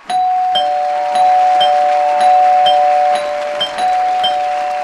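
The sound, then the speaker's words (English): A doorbell rings five times in quick, steady succession, its bright chiming tones loud, with a sustained ringing hum running underneath and no voices. “We'll celebrate this with five doorbell rings.”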